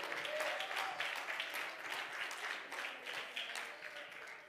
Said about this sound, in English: Hallelujah. Oh, clap your hands and praise Him this morning.